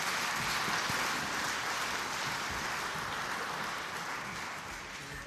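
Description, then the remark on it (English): A crowd claps steadily in a dense, continuous burst of applause for the church's groups, with no voices over it, holding strong for several seconds before easing slightly toward the end. “Let me give them a round of applause, please.”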